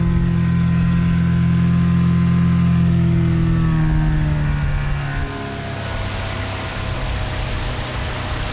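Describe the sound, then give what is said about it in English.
A small outboard motor on a 12-foot boat drones steadily on a river, its pitch shifting as the boat slows and changes speed, with a wash of water and wind noise underneath. No one speaks. “She takes me out in a 12-foot boat to show me the source of her anger.”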